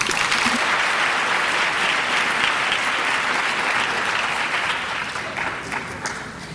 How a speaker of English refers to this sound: I want to hear another round of applause for Jane Smiley, Jennifer Egan, Bonnie Jo Campbell, Darren Strauss, Isabel Wilkerson. Remarkable writers.